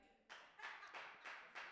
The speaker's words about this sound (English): Wow, one clap in the building. Maybe it's more online.